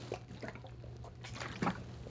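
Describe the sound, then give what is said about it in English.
Water pours softly into a container in short, uneven gurgling bursts, quiet, over a low steady electrical hum. “Excuse me, more water.”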